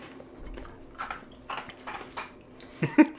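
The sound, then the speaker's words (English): Someone chews ice, producing about half a dozen crisp, irregular crunches over a low background hum, with the last two crunches the loudest. No one speaks. “I'm sure nobody wants to hear me chewing ice.”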